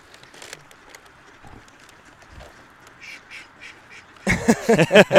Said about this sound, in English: And they want to talk. It's pretty crazy what these mallards will do when they go out into the neighborhoods and feed.